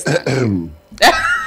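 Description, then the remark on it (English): A deep, rumbling throat clearing in two drawn-out pulses, followed by a sharp, breathy burst like a short cough, loud with no talking. “you don't have to clear your throat that way, you know.”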